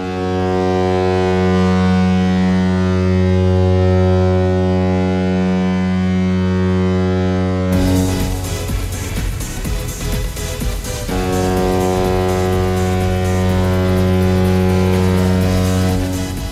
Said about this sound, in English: Finally, Sharks and Colorado. Let's check out San Jose's goal horn.